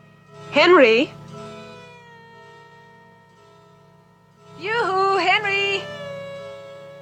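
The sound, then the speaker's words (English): A cat meows twice, a short wavering cry followed a few seconds later by a longer, drawn-out one, both fairly loud over a steady low hum. “Oh, you didn't eat your supper, bad cat.”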